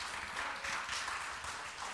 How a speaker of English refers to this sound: Yes, okay, clap for Jesus, please.